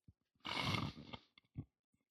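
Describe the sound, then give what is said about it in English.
A loud, rough inward burp after drinking a cold carbonated drink, a harsh croaking gulp lasting under a second, followed by a couple of short throaty clicks and swallows, with no talking. “It's burping. That was an inward burp.”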